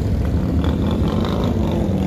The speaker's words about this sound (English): motorcycle ride for Dad. In this context, wonderful sound. It was exhilarating, it was amazing, but imagine you're trying to sleep like last night.